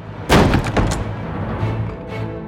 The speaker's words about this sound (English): Siegmund and Sieglinde jumped apart as the door slammed open, scrambling to pull on their clothes.